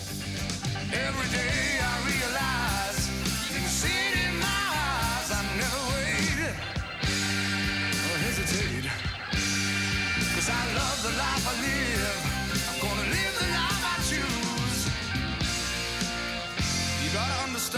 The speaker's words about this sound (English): Come on, I could hear this in like Mark IV …. Yeah, and you get some classic …, some great howling organ there.